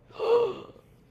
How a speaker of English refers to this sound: Gasp. Mm-hmm. Gasp. Big gasp.